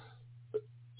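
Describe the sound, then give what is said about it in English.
A short, harsh cough, a lingering cough after the flu, bursts out loudly at the very end, following a faint throaty sound, with a low steady electrical hum running underneath throughout. “And again, pardon the cough.”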